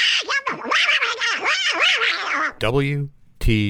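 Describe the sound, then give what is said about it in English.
A voice imitates Donald Duck with buccal speech, made with the inner cheek rather than the larynx: a raspy, garbled run of squawky syllables for a few seconds, followed by two short, sharper squawks. “Officially, Donald Duck Talk is formally called Bucol Speech.”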